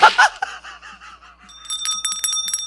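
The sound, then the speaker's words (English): A bell sound effect rings out with a bright, sustained metallic tone and rapid repeated strikes, following a brief burst of noisy sound and some wavering tones at the start. “Trash bell.”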